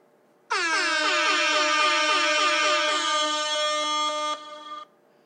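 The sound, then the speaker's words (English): A loud, sustained air horn sound effect blares for about four seconds with a rapid, rhythmic pulsing warble, then drops to a softer tone briefly before cutting off. No voices. “Okay, sounds like air horns and the toilet flushing.”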